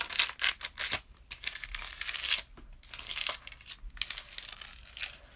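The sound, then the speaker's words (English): Paper being folded up into as many parts as needed to make it really skinny, a run of crisp crinkling and rustling bursts, irregular and fairly loud, with no voices. “Now I want you to fold it up into as many parts as you need to, but I want it to be really skinny.”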